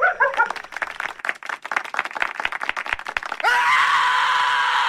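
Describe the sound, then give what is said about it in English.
Frantic screaming mixed with a rapid clatter of sharp, clap-like bangs, then a sudden loud, sustained shrill scream that swells up and holds steady to the end. “I hate it when they scream.”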